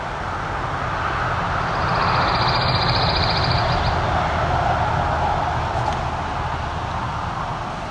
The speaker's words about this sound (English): We can get a few seconds of quiet to hear this pine warbler. Mostly yellow bird. Sticks to the tops of these pines.